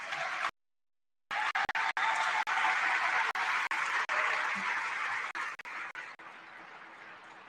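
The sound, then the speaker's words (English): A crowd at a gathering applauds the Albuquerque staff steadily, a dense wash of many hands clapping that holds strong for several seconds, then thins and fades slightly toward the end, after a brief silent gap at the start. “So a huge round of applause for all of you.”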